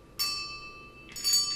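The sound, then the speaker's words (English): Two bright, metallic bell strikes, made as a stage sound effect during a two-person radio-play performance, ring out loud, each leaving sustained shimmering tones that hang in the air, the second strike landing about a second after the first. “Soon it rang out loudly, and so did every bell in the house!”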